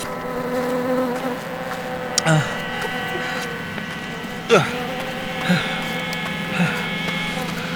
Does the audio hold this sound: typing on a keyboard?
no